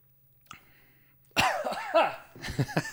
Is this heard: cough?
yes